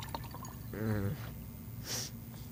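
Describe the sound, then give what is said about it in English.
Water pours briefly into a glass, its ringing tone climbing as the glass fills, followed by a short breathy hiss against a quiet background. “Do you think you can drink this entire glass of water?”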